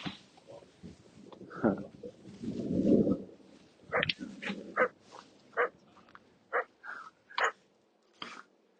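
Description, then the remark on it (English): Two small dogs snuffle, grunt and give short yappy barks, a string of quick uneven bursts with a longer rumbling growl early on and no talking. “Two little doggies here.”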